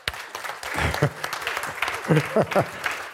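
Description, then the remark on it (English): An audience claps in a steady, dense patter of applause, with a man's voice breaking through at moments over the clapping. “I'll do anything and say anything for a clap.”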